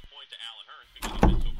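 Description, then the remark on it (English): A voice is briefly heard before heavy, loud pounding on a door: a few thuds in quick succession, booming and forceful like someone banging hard. “Who the hell knocking on my door like they the police?”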